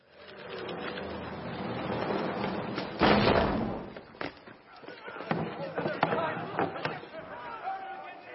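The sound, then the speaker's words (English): Attackers pound heavily on a fortress door trying to break in, a series of loud, irregular booming thuds with one big crashing blow, over a murmur of tense voices and rumbling background noise. “This group of people are buckling under the evil that is pounding on the door to get in.”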